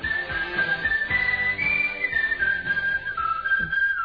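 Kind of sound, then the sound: human body sound, whistling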